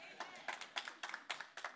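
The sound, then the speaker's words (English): A Southeast Michigan non-denominational church audience claps during a sermon in a steady rhythm, sharp bright claps landing roughly four times a second, with a faint murmur of voices underneath. “I didn't mean that you had to clap.”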